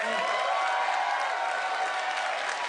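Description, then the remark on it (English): A crowd applauds steadily to vote for the crocodile hunter, many hands clapping in a dense, even wash of noise with a few scattered cheers mixed in, holding at a constant level throughout. “So, let's do this by applause.”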